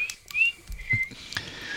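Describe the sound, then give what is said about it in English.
Someone whistles a brief march-like tune, a few clear, thin notes stepping up and down, with faint clicks and rustling in the background and no talking. “He's just whistling like the Bridge Over the River Kwai”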